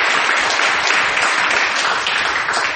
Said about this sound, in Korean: 자랑스러운 학생부장과 우리 청년학생들에게도 또 성화들에게도 큰 박수를 부탁드리겠습니다.